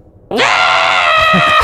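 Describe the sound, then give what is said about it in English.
A voice imitates a creature's scream: one sudden, loud, shrill harmonic shriek held for over a second, with no other talking. “What language is he screaming in?”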